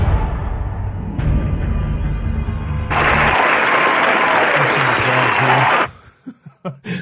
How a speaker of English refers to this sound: I'll insert my own applause.